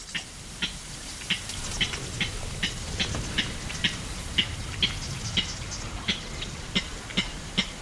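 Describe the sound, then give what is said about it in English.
A Yuma clapper rail in a cattail marsh beside a canal at the Cienega gives a long series of sharp, dry clucks, repeated steadily about twice a second over a constant rushing background hiss, with no voices. “And that's when we hear the unusual cluck that gives clapper rails their name.”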